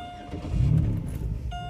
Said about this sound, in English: Obviously, you could hear my engine turn on because I have the loudest fucking car in the universe. God damn. Not a good thing. It sounds cool. Don't get me wrong, but it's definitely loud